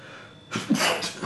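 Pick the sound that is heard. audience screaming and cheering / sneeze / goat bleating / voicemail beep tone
sneeze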